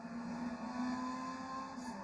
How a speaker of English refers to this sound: So... there's a car.